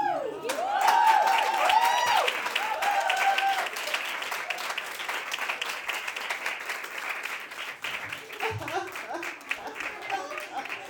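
An audience breaks into sustained applause, loud at first with a few high whoops or whistles, then settling into steady, dense clapping that eases slightly toward the end.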